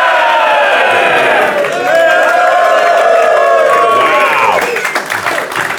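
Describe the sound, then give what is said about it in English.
A lively conference crowd at NDC in Oslo, at a Going Serverless panel, cheers and whoops loudly, with sustained shouts and some clapping rising over a constant roar of many voices, energetic throughout. “This is not a subdued crowd. No, not a subdued crowd at all.”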